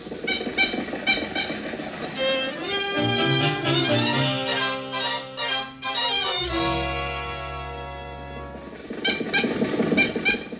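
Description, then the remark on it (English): An old car engine sputters and wheezes as it tries to start, with choppy bursts giving way to long groaning, honking tones that rise and fall before it coughs back into sputters. “Why do they always gather when we try to start the car?”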